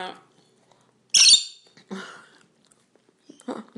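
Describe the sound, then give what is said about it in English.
A single loud, shrill chicken squawk bursts out as the chickens eat breakfast, followed by a few quieter clucks and murmurs, with long quiet gaps between them. “At least you feed your chooks after you've eaten.”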